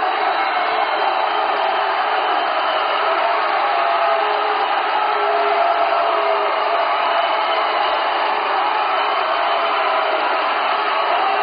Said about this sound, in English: I tell you what, he has the crowd going nuts,